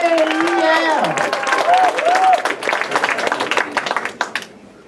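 A crowd claps and cheers for a few seconds, with whoops and shouts on top, then the applause thins into scattered claps and fades out.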